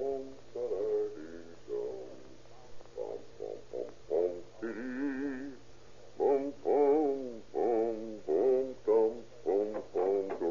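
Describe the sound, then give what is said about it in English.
A man hums an old German song alone while working late in an isolated laboratory, bent over a retort: a steady run of wavering, melodic phrases with short breaks, moderately loud over a faint low background hum. “The Mexican watchman, making his rounds with his little dog, peers through the window, sees the doctor's huge frame bent low over his retort, and hears the doctor humming an old German song.”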